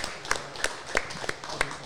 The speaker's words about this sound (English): Everyone, a round of applause for Steve Eller. Thanks, guys.